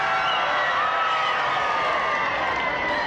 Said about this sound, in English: President Kennedy is flanked by Representative Jim Wright. You hear the crowd applauding.